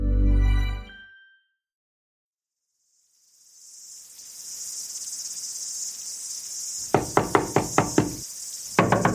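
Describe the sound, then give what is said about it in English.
A loud run of about six sharp knocks on the door of a pilgrim's home in the Massachusetts Bay Colony, followed after a short pause by two more, over a steady background of chirping crickets at night. “Prithee, what jackanapes wouldst hammer on the door of a modest, God-fearing pilgrim of the Massachusetts Bay Colony at this unholy hour?”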